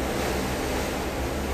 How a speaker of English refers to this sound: I want you to see the waves that you're hearing in the back as they're crashing against the rocks that save the harbor and the bay.